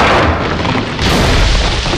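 A loud, rumbling crash as a bridge structure collapses into a heap of metal, a dense roar of booming noise that holds steady for about two seconds with a brief dip midway, and no voices.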